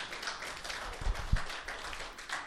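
A crowd applauding steadily, a dense wash of many overlapping hand claps at an even, moderate level with a few sharper thumps, and no voices over it.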